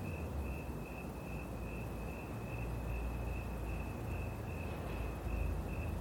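Steady, pulsing cricket chirps ring out continuously over a low, constant ambient rumble at a calm lake at sunset among pine trees and mint plants, with no voices present.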